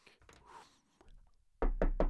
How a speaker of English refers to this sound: that fucking rock demon better be knocking on my door.